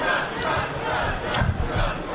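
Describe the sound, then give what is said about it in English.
A dense crowd of Trump supporters roars with overlapping shouts and cheers, a steady loud wash of many voices with brief sharper yells rising out of it. “So, all right, we're finally running into the Trump we're crowd. We're being surrounded.”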